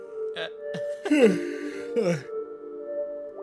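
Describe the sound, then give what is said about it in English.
A drawn-out yawn: breathy, strained vocal bursts that slide downward in pitch, preceded by a few short voiced sounds, all over a steady low background hum. “Oh, God, I'm so close to a yawn right now.”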